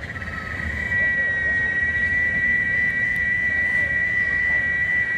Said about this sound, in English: I'm not sure if listeners can hear this. There are animals, I think they're called cicadas, something like that. And they are very small animals somewhere in the tree.